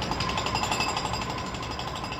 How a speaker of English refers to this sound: The same year saw the introduction of the first Atlas rock drill.